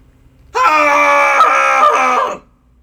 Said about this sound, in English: And so, yeah, everyone, wherever you are, let's do a cathartic scream for the summer that is upon us. And so, yeah, everybody, go ahead and find a place where you can scream. And we'll do a three count. And join in with us. Here we go. In 3, 2, 1.